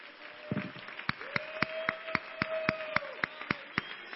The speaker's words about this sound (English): Why don't you clap your hands if you believe it this morning?